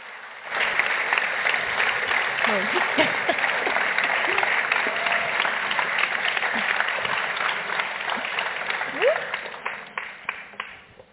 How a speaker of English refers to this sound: And what better way to begin our panel in this evening with a round of applause. Please welcome our panelists.